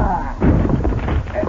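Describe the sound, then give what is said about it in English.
The heavy wooden front door of a building gives way as Pancho and Cisco charge it with their shoulders: a loud, deep thud followed by a rough, splintering crash and rumbling clatter that fades over about a second. “Let us put our shoulders to this door, Pancho. Now!”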